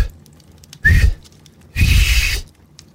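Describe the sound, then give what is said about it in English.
Someone tries to whistle twice: a short breathy puff with a brief thin tone, then a longer airy blow carrying a faint, wavering pitch. Mostly rushing air, with no talking. “More rapid than eagles, his coursers they came, and he whistled.”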